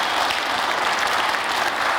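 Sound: audience applause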